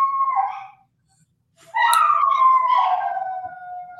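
A phone alert rings out in two loud, wailing bursts with a gliding, siren-like pitch, separated by a brief pause, with no one talking over it.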